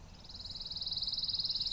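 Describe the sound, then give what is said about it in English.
A pine warbler sings a steady, rapid musical trill of evenly spaced notes that swells slightly, heard clearly over a low background rumble. “That's a pine warbler, one of several bird species that need pine habitat to survive.”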